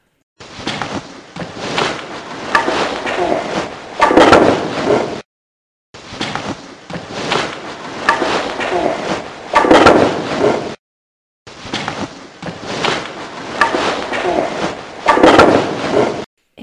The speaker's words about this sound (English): The wood floor creaking is me throwing wood on the, because I'm picking up wood and putting it in the corner of the room.